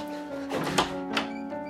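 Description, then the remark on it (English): A few dull, hollow knocks on the door of a mansion, irregularly spaced, sounding over a steady, sustained musical drone that continues beneath them. “You walk up and knock on the door.”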